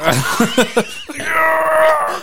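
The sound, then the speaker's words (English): A voice imitates a video game character screaming: a few quick, choppy yelps followed by one long, sustained, strained cry, loud. “It's all it is just people yelling.”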